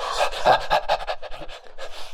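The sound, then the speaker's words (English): Heavy, rapid panting coming through after a crackle of static, a quick run of about eight or nine breathy huffs in a couple of seconds, loud and rhythmic with no talking. “There's a moment's pause, and there's a crackle of static, and then Sherman's voice comes through panting.”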